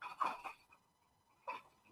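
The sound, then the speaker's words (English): A few short, faint cat cries come in two quick bursts at the start, then a single one after a pause, with no talking and quiet between them. “Fucking tree killer. Cats.”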